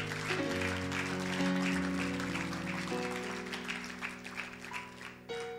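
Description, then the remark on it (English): An audience claps steadily together for the Lord Jesus over sustained organ-like keyboard chords, the dense applause filling the whole stretch at a moderate level with no voices standing out. “Clap for the Lord Jesus.”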